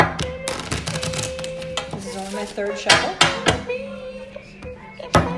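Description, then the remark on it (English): Sharp, papery clicks and slaps of a deck of playing cards being shuffled and handled during a card game, coming in uneven bursts, with people talking and music playing in the background. “This is only my”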